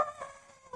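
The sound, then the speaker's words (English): A person mimics the goats inside the ship in a Guardians of the Galaxy movie scene: one short, wavering, nasal bleat with a shaky pitch that dips and then rises again at the end, lasting under a second. “And it shows them on the ship, and the goats are just, like, inside the ship, and they're just like...”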